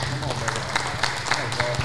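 An audience applauds as a young broadcaster is introduced, in a steady, dense wash of clapping that holds at an even level for the whole stretch, with a low hum and faint crowd murmur underneath.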